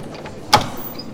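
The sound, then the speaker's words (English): A door opening with one short, sharp click-and-thud, brief, standing alone against a quiet, faintly hissing background. “Please open the door.”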